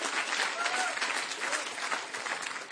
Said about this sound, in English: Come on, give God a clap if you catch this. Geef God een applaus.